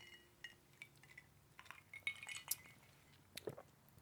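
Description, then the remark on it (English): Glasses of vodka clink together a few times in a quick toast to Ukraine, bright ringing taps over faint rustling and handling noise, fairly quiet, with no one talking. “Yeah, well, I was going to say, what's a Ukrainian word for cheers?”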